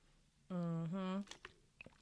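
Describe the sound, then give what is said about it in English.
A sip of water: a loud two-part hummed "mm-mm" through closed lips, then a few soft wet clicks and swallowing gulps. No words are spoken. “Okay, so let me take a sip, because girl, what we finna get into today or tonight, let me hydrate.”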